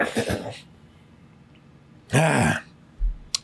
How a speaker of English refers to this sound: All right, y'all. Let me clear my throat for this man here.